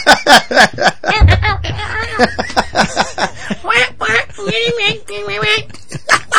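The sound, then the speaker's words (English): A voice imitates Triple H sounding like a dying seagull: a rapid run of strained, squawking, quack-like vocal bursts that wobble in pitch, loud, with a brief low rumble partway through. “It just sounds like a dying seagull.”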